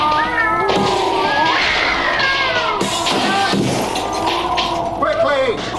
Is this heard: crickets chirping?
no